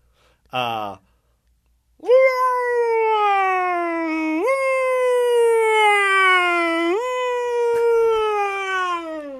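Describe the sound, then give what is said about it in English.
After a brief vocal blip, a person vocally imitates a US ambulance siren from Los Angeles: a long, steady siren-like wail, pitch stepping up and easing down for about seven seconds, loud and alone. “What about the U.S. ambulance? What part? What city?”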